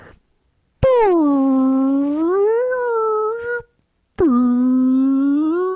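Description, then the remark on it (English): A voice imitates a whale's call with two long, loud, moaning tones: the first bends low and then rises and falls, and the second swoops down sharply before holding a steady pitch. “No, that's how whales talk.”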